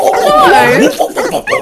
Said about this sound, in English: The dog's really excited.